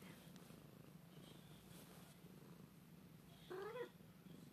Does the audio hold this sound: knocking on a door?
no